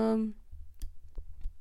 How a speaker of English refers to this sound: Don't tap in the mic. Oh, shit. Yeah. Spiked it. Oops. If you guys had to hear that, I'm sorry. I know. I hope you're not wearing headphones or anything.